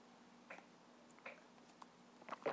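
Soft sips of water: a few short wet slurps and gulps spaced about a second apart, the last ones slightly louder, over a faint steady hum with no talking.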